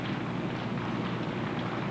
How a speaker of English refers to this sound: Oh my God, listen. Yeah, there's a huge rainstorm happening right now. That's just rain coming down.